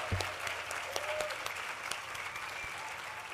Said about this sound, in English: So say thank you to them. Big round of applause.